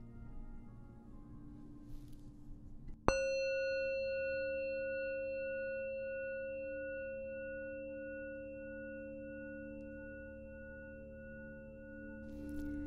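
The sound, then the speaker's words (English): A single meditation bell is struck once at the start of a guided visualization meditation, giving a bright metallic onset followed by a long, steady ring of layered overtones that fades slowly over several seconds above a low background hum. “I'll guide you through this visualization starting with a bell.”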